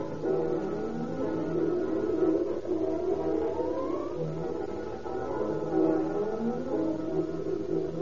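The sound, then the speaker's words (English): Fire engine sirens wail continuously as fire engines race screaming through deserted streets to a fire, their pitch sweeping up and down over a dense rumble of engines and traffic, loud throughout with no voices. “Fire engines, chemical cars, and long, sleek battle wagons fly screaming through the deserted streets.”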